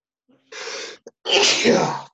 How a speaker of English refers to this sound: oh, excuse me. Bless you. Oh, thank you. Sorry about that, folks. Hay fever season. I can't help it.